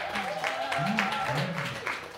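A crowd applauds steadily for a couple of seconds, a dense wash of clapping with some cheering voices mixed in, holding an even loudness throughout.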